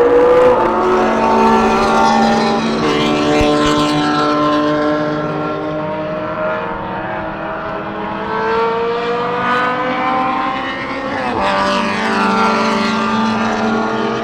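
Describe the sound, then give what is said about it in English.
Race cars roar steadily through the whole stretch, their high engine whines sliding up and down in pitch as they pass one after another, loud and continuous with no talking. “Yeah, we're definitely, but there's getting to be gaps in the race where we can almost talk.”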